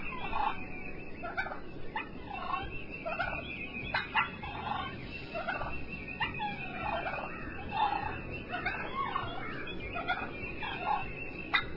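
A turkey gobbles over and over, a run of rapid, rattling bursts that repeat steadily for about twelve seconds at a moderate level, with no talking and a soft hiss underneath.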